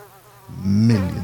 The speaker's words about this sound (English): Millions of mosquitoes were just hovering the air, creating a cloud. Like, if you inhaled too profusely, you were going to swallow some.